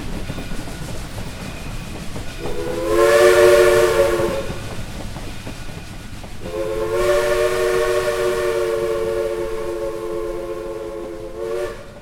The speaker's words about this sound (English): We went to the Monticello Railway Museum in Monticello, Illinois, and rode on their last steam engine running of their 2015 season.